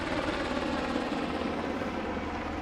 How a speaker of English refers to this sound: Lots of helicopters.